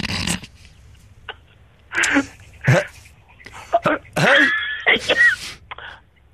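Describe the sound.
A person imitates a dolphin, with a string of breathy squeaks, clicks and rising high-pitched whistles in irregular bursts, the longest squeal near the end.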